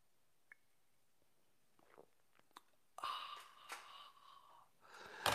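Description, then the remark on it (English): A few soft clicks and small mouth sounds, then a loud slurp of someone sipping hot coffee from a mug, followed by a breathy exhale and another slurping sip at the end. “The thing that makes everything better. It's called the simultaneous sip. It happens now. Go!”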